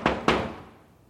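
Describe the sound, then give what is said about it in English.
Two firm knocks on a wooden door, given as a demonstration during a talk about knocking at the door, each a sharp thud followed by a short ringing decay, with the second knock slightly louder. No voices are heard. “So He stands and He knocks at the door.”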